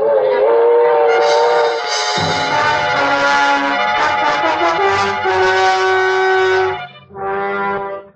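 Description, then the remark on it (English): A passenger train, the Lightning Express transcontinental luxury train, runs on the rails, its loud, steady rumble topped by a long, wailing horn chord that sounds for several seconds, breaks off briefly, then returns in one last short blast. “Police of five Midwestern states are on the lookout tonight for the homicidal maniac who stalked the corners of the Lightning Express transcontinental luxury train, claiming the total of three victims murdered in cold blood.”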